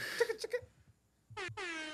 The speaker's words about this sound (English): It doesn't matter when those air horns are blasted. I'm going to laugh.